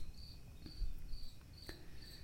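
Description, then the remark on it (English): Crickets chirp in August, heard from a garage, in a steady, repeating pulse of high, thin trills, fairly quiet and set against a low background hum with no one speaking. “In the garage with my paintings. In August with the crickets.”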